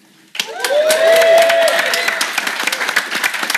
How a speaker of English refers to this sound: And, of course, you wonderful audience, please give yourself a cheer.